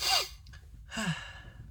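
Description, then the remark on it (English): Two breathy bursts of air, a sharp short one and then a longer, rougher exhale, like someone sniffing and huffing, with no speech. “Why are you sniffing and huffing?”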